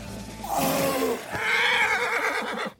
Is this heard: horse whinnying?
yes